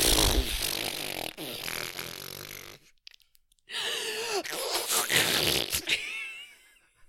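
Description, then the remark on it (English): A person mimics the sound of Bella's truck with their voice: loud, raspy sputtering and rumbling in two long bursts split by a brief pause, the second ending in wavering, whiny pitch sweeps. “Anyway, that was my impression of Bella's truck.”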